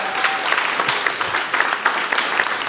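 An audience claps steadily, a dense wash of many hands patting at once with no pauses, fairly loud and even throughout, with no speech over it.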